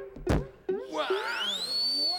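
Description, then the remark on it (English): A punching bag is knocked off the wall: two heavy thuds, then a long whistling tone that rises and holds high as it flies out of the window and into the stratosphere, with no talking. “He knocked the punching bag off the wall, out of the window, and into the stratosphere.”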